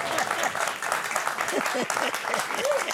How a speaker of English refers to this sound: Gosh, this is my 73rd anniversary of ministry. Now you could have clapped there, and I would let go you. Go ahead.